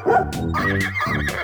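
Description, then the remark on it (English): Two drawn-out, electronic-sounding dog barks from an electronic farm in quick succession, loud, with a tonal, toy-like quality and no talking. “Oh, look at all the animals. There's the horsey. And the doggy.”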